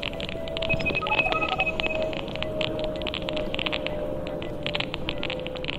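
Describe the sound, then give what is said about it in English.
Wi-Fi network signals from homes and businesses, recorded by Frank Swain and Daniel Jones with smartphone-enabled hearing aids while walking down streets in London, turned into sound: a steady, dense wash of crackling static dotted with sustained electronic beeping tones at a couple of pitches, with no voices throughout. “These crackles and beeps are Wi-Fi networks.”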